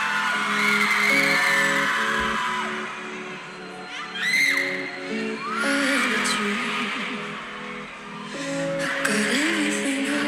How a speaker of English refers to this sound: The same screams and passion were heard at Governor's Ball.